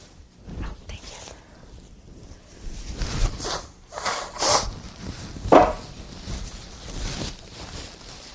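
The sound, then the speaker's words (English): Crinkly rustling of a tissue, then a couple of short, breathy, hissing blasts as someone blows their nose, the second burst the loudest, followed by more soft rustling. “Try not to blow my nose right into your ear.”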